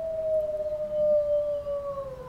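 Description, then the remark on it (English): Wolves howling in overlapping voices: one long, steady mid-pitched howl slowly sinks while a higher howl rises beneath a soft low rumble. No one speaks. “You don't want another pack of wolves infringing your space and taking away what you think belongs to you, right?”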